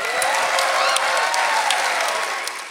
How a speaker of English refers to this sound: We're about halfway done with the show, so let's get a round of applause as we get to our break.